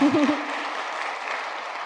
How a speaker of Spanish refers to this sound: Dale un aplauso al Señor si le ibas a dar a Él.